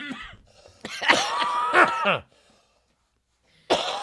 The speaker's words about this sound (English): I'm tired of coughing too.